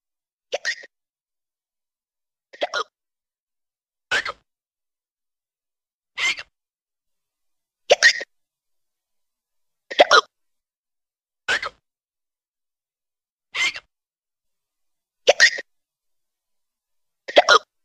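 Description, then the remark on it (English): Loud hiccups repeat about ten times at a fairly steady pace, roughly every one and a half to two seconds, each a sharp burst separated by silence, with no talking. “Those hiccups are crazy, man.”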